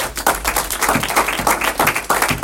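A crowd claps steadily, dense overlapping handclaps forming a loud, continuous wash of applause with an uneven, rippling rhythm and no voices on top.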